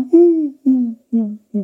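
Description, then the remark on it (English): A voice imitates the call of a barred owl or great horned owl with four low, hooting notes in a steady rhythm, the first longest and each later one shorter, clear with brief pauses between. “woo, woo, woo, woo, which is the call of either the barred owl or the great horned owl.”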